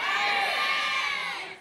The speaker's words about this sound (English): I want to know who you think is the best superhero, okay? I'm going to give you 3 seconds, then you yell it out who you think of the best superhero is. 3, 2, 1.